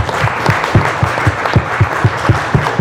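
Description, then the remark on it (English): An audience at the Wildcat in Central New York applauds loudly and steadily, a dense wash of clapping with a regular, rhythmic beat pulsing underneath throughout. “So to the community, give yourselves a round of applause right now.”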